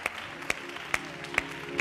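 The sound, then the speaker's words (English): A church audience, Bibles set down, claps unto the Lord in a steady rhythm, five sharp unison claps spaced evenly about half a second apart, with a continuous wash of scattered crowd noise between the beats. “Would you set your Bibles down and clap unto the Lord?”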